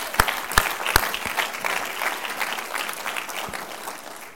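A crowd claps their hands to Jesus in sustained applause, starting with a few loud, sharp claps before settling into a dense, steady patter of many hands.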